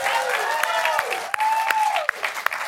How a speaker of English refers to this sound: I hear some claps. Thanks. If you find something clap-worthy, even if it's not, just please feel free to clap.